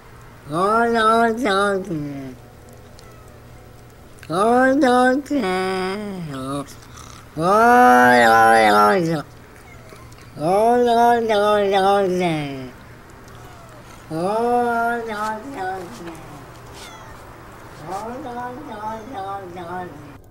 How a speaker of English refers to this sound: And then he links off to the Olong Johnson video of the cat talking, which I'll put in the video in the podcast now. Oh, Olong. Oh, Olong Johnson.